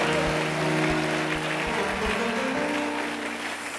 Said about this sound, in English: Clap your hands, somebody, and say, thank you, Jesus.